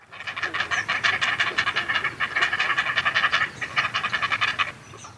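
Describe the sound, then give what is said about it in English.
Great blue heron chicks beg for food in a rapid, rhythmic chorus of harsh clacking calls, loud and continuous for several seconds with brief pauses, without any talking. “The chicks are also very noisy when they beg for food.”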